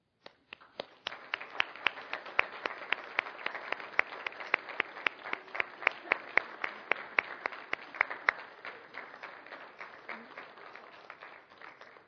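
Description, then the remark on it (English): A church audience breaks into sustained applause for the women of the church family, who stand, lasting around twelve seconds, a dense wash of clapping with sharper individual claps standing out, tapering slightly at the end. “And so if you are a woman who is a part of our church family, would you please stand for a round of applause?”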